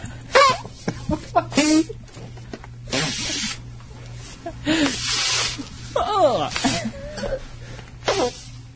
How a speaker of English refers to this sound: Oh, so she's like spreading her cheeks and farting.